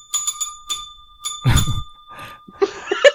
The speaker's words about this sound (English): So I'm gonna start now and just ring the spoiler bell, and if you haven't watched it yet, please switch off, finish watching Loki. Why have you not watched it yet? And then you can tune back in. So spoiler bell is being rung.